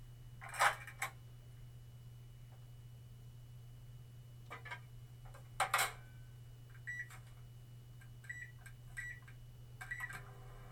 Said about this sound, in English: What are you cooking up in the microwave over there? That's a classic sound that everybody knows, right? The beep, beep, beep. And the door shutting, too. That, like, hollow, plasticky, thin metal sound of the microwave.